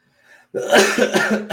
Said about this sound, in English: Man, this cough.